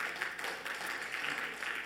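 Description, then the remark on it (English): A church audience applauds to give God a hand, many hands clapping in a dense, steady wash of sound that holds at an even, fairly soft level for the whole two seconds, with no distinct voices. “Give God a hand.”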